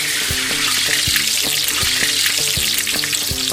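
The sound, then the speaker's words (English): Latkes deep-frying in oil at Hanukkah time, a steady crackling sizzle that fills the whole stretch, with faint low tones and soft thumps running underneath. “We'll be examining the love affair between the Jew and the deep-fried latke.”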